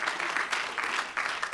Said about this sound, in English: But if we can learn to get a hand up. If we can learn to clap our hands. Hallelujah.